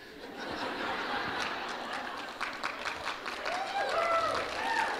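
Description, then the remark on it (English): A church audience applauds a sermon steadily for several seconds, a dense wash of clapping with scattered laughter and chuckles mixed in and some voices rising over it toward the end. “No, don't clap anymore.”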